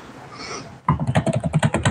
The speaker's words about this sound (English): Yeah, I'm sorry here. I'm typing.